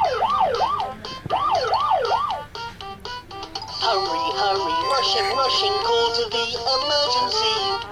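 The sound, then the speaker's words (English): A children's toy ambulance siren wails loudly in quick rising and falling sweeps, then switches to a bright, stepped electronic jingle of beeping tones. “This is the child's ambulance.”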